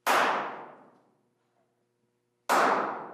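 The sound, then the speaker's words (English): Two sharp hand claps, about two and a half seconds apart, each ringing out in a long reverberant tail that fades over roughly a second, made to activate a place and learn its acoustics during an ambient recording. No one speaks. “Activate the space with a clap that is pretty much the same from place to place.”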